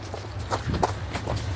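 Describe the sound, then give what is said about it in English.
Quick, rhythmic footsteps of people running past lions to catch a train, a handful of thudding strides over a low background rumble, with no voices. “We're running past lions.”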